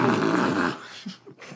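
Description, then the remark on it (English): A loud, honking blow of the nose into a handkerchief, a rough buzzing blast under a second long, followed by a couple of faint snuffling sniffs. “What are you blowing? You don't have you lungs.”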